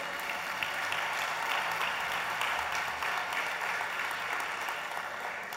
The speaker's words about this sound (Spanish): Dele un aplauso.